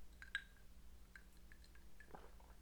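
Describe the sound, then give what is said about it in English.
Someone sips coffee on a Sunday afternoon: a few soft, wet mouth clicks, then a brief quiet slurp and swallow. Faint against a low background hum, with no talking. “Let me sip my coffee.”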